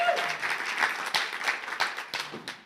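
A crowd cheers and applauds together, a dense wash of clapping with scattered whoops rising over it, steady and fairly loud throughout the short burst.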